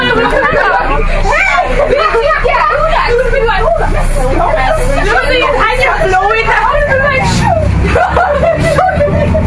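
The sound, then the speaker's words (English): Loud, overlapping chatter and raised voices from a group of passengers at the back of a moving local bus, with a steady low engine rumble underneath for the whole stretch. “Why does it have to be that much shouting at the back?”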